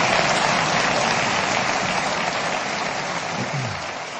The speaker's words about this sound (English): To a round of applause, which... Yeah. Wow. That's a bigger laugh than that should have got.